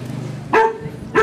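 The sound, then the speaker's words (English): A pit bull barks twice, about half a second apart. The barks are loud and sharp, over a low steady background hum, with no talking. “I'm in the back with the dogs. Chilling with some pit bulls back here.”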